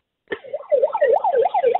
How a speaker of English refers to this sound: Get this megaphone and use the siren.